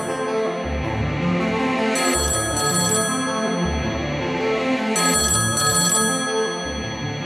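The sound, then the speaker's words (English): An old-fashioned telephone bell rings loudly in a flat, its jangling trill repeating in a steady ring-and-pause rhythm with no voices. “I put my feet up with a cup of tea and then the phone rang.”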